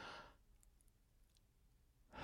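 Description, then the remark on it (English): A breathy inhale drawn in deeply through the nose, followed by a quiet held pause, then the rush of the breath beginning to release. No one speaks. “Right, deep breathing. Hold it, breathe back out.”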